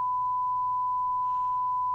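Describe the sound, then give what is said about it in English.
A steady, continuous censor bleep covering a woman's swearing at an airport security officer, a pure high tone held unbroken for about two seconds at moderate volume, with only a faint low hum beneath it. “The part that was blanked out was when she called them psycho black ass motherfucker at one of the officers.”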